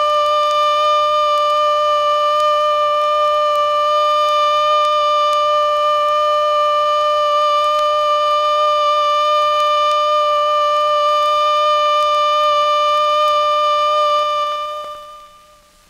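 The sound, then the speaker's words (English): A loud, steady civil defense alert signal on a siren, warning of nuclear attack, holds one unwavering pitch for about fifteen seconds, its rich harmonic drone sounding alone before fading out quickly at the end. “The alert signal is a steady blast on a siren or fire horn of 3 to 5 minutes duration.”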